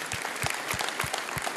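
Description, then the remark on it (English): An audience applauds, dense clapping filling the short moment at a steady level, with a regular low pulse roughly every third of a second running beneath it. No one speaks. “Round of applause.”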